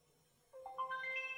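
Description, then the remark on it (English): A phone's find-my-phone alert tone sounds after a brief quiet pause, a quick series of bright electronic beeps stepping upward in pitch and sustaining, moderately loud with no one talking. “But I'm gonna push the Find Phone in 3, 2, 1.”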